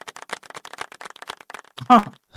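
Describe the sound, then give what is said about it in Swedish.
A short burst of crowd applause, a dense patter of many hands clapping at once, which ends in a louder cheering voice that slides downward in pitch. It is played as the reward for a correct answer in a quiz about Crystal Palace. “Jag har 100 perser bakom mig som bara väntar på att applådera.”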